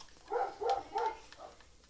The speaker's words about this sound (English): It could be the neighbor's dogs. Too. An intruder. He might be talking shit to the neighbor dogs. It's all of them. All of them.